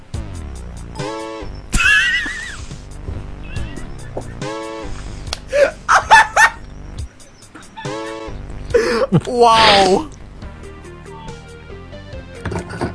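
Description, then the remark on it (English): A cheap MIDI version of a dubstep track plays, with honking, horn-like synth tones, choppy stuttering bursts and loud blaring, squelchy blasts that sound crude and buzzy. “It sounds like a farting in a bathtub.”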